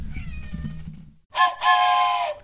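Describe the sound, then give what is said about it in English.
A cat named Kiki meows twice, a short loud cry followed by a longer drawn-out one, after a second of low background rumble. “Come here, kitty.”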